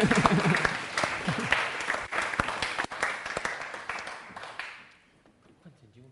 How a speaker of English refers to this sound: So a round of applause